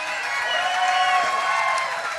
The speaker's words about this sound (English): I want you to get pretty excited with me in the house today. In fact, I want you to go bananas. I want you to clap, scream, do everything.